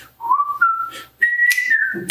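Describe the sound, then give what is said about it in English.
A person whistles the Andy Griffith theme song, a short, jaunty tune of a few sustained notes stepping upward in pitch, clear and bright, with breathy pauses between phrases and no talking. “And coming out of that place, my view of Jesus is very Andy Griffith theme song.”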